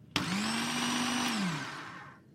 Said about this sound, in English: We took a set of carrots, we put it into a blender. So we cut up some raw carrot, we mixed it with a bit of water, and we popped it into a blender.